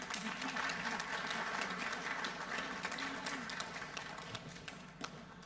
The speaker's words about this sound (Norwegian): Du må gi min kone en god klapp, da.